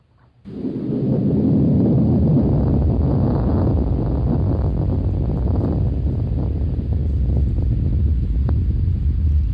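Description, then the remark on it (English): A deep, continuous rumble of an undersea earthquake begins abruptly and holds steady at high loudness, dominated by low frequencies with a rough, grinding texture. “And the next sound you'll hear is the sound of an earthquake undersea.”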